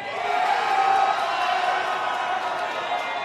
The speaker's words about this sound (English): All right, the crowd's excited. I think we all liked this pick before it happened.